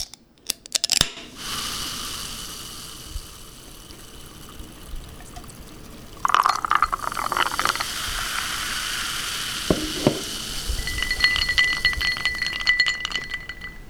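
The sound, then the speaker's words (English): A can of gin and tonic cracks open with a sharp metallic snap, followed by a steady fizzing pour and light clinks, with a few bright ringing tones near the end, as an evening drink is served. “This is us sitting down for our evening drink, except as you'll hear with the opening of the can, I have a gin and tonic, as straight scotch is way out of my league.”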